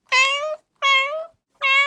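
A cat meows three times in a steady rhythm, each call about half a second long, loud, with short silences between and no voices.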